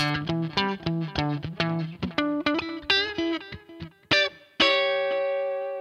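Electric guitar played first on the bridge pickup, then the neck pickup: a run of rhythmic chord stabs and picked notes, ending in one loud chord left ringing out. No voices.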